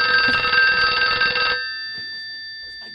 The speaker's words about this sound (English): Guys, this phone is ringing, and it happened as soon as Ryan left.